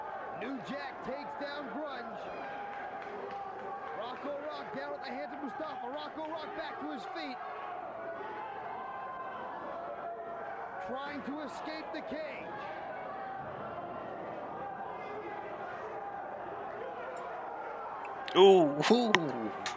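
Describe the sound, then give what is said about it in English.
A single loud, ringing clang of a frying pan striking a wrestler lands near the end, sharp, after a long stretch of steady voices talking over a busy background. “I hold my pin when I make eggs in the morning. I'm like, damn, if I hit someone in the face with this, I'll fuck them up.”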